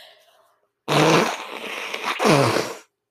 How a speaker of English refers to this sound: I'm sorry, I really need to blow my nose. As you can tell, I'm very congested now.